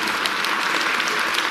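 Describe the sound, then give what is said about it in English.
An audience breaks into steady, loud applause, a dense wash of many hands clapping at once with no pauses and no voices rising above it. “And you better applaud that as much as you did Washington, D.C. being absent.”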